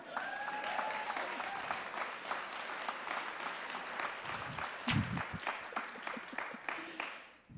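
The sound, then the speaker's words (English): An audience breaks into sustained applause, dense overlapping claps at a steady level with a few brief cheers or whoops rising out of it partway through. “Why is it that you applauded for that?”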